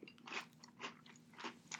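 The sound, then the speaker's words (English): Crisp crunching of dry Post Oreo O's breakfast cereal with marshmallows being chewed, with three or four loud bursts in a steady chewing rhythm and no voices. “And it's not as good of Captain Crunch that I'm willing to put up with that when eating it.”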